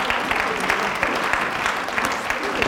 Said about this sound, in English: Give God a big, big, big, big, big clap.